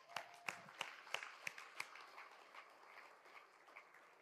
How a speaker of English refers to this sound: Come on, let's clap.